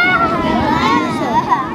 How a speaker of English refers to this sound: Tons and tons of kids, completely in awe.